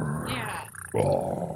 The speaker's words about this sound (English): Do gators roar? I don't think they roar. They roared in this movie.